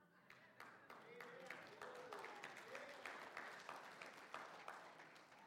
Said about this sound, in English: We got an awkward church, don't we? Some people clap and some people scream. I think it's appropriate to clap and scream.